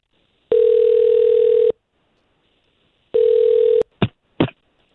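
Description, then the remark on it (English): A phone call placed by morning hosts of radio station K92.3 rings out with two long, steady electronic ringback tones separated by a pause, followed by two quick clicks. It is clear, with no voices. “We'll try to call him right now.”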